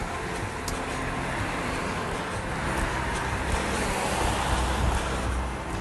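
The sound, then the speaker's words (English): A steady, dense roar of busy morning road traffic rushes past without a break, loud, with low rumbling swells as vehicles go by and no voices. “Anyway, traffic seems a bit busy this morning for some reason.”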